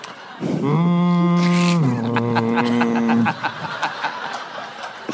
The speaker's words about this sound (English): Wait, you got a foghorn in the lobby?